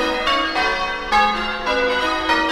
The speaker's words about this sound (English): Bells are tinkling.